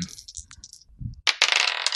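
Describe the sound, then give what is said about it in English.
Small hard objects clatter, then a sharp impact at about 1.3 seconds starts a bright, sustained rattle of two dice tumbling across a surface. No one speaks. “And so I get two dice.”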